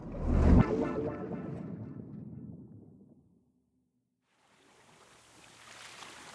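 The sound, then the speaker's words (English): A deep, low-frequency underwater rumble, recorded by a microphone at the Challenger Deep, the lowest point of a deep-sea trench, with a bubbling, boiling-water texture, swells loudly at first and fades away, then after a short silence a faint, steady hiss of water noise returns. “at its lowest point, called the Challenger Deep, scientists heard a strange low-frequency sound that seems like boiling water.”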